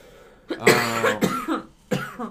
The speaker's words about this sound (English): I'm waiting for you to quit coughing. He's okay.